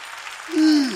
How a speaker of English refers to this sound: If you know God is a miracle worker, why don't you clap your hands and give praise to God?